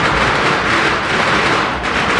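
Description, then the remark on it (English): A dense, continuous barrage of firecrackers exploding at a Lunar New Year parade in San Francisco, rapid loud pops blurring into a harsh, steady crackle that holds its intensity for the whole stretch, with no voices audible. “And of course, a Lunar New Year parade wouldn't be complete without lots of firecrackers.”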